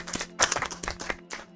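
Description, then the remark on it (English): A short burst of hands clapping, several people applauding together after a song in quick, irregular claps that sound moderately loud. “Is far more claps than you get in the bar right now.”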